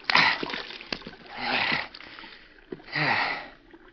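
Close-up water splashing in three separate bursts, like a hand scooping and splashing stream water, with quiet trickling and small drips between the louder splashes.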